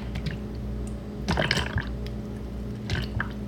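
Creamer being poured into a cup, with a couple of short liquid splashes and gurgles over a steady low background hum, and no talking.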